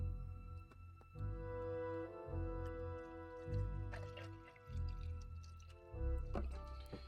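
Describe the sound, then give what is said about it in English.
Cranberry juice glugs out of a bottle in rhythmic bursts into a plastic mason jar mug, clear, with the pitch climbing as the mug fills. No one speaks. “But we are gonna pour some more cranberry juice.”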